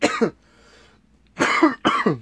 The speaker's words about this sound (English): You're dying. I know, dude. These hiccups ain't helping.